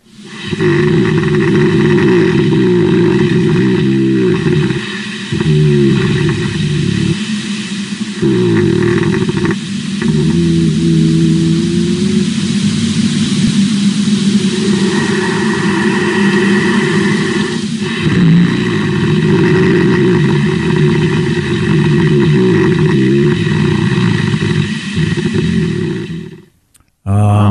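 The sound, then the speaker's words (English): Bears under a cabin in South Lake Tahoe rumble and snore in deep, loud, drawn-out growls that run almost without a break, pausing only briefly a few times before the throaty droning resumes and cuts off at the end. “Some odd rumbling, snoring-like noises that they heard throughout the winter, this family.”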